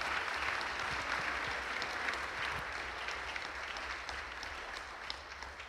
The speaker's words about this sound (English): Well, hey, let's give a round of applause to these ladies.